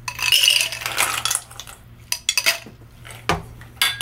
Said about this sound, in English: We're going to stir it because it's a clear cocktail. We want it to come out clear and not cloudy. All right. So let's put some ice in our mixing glass.